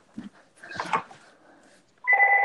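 A telephone starts ringing loudly near the end with a steady electronic trill, following a few scattered softer noises, including a short bark-like sound.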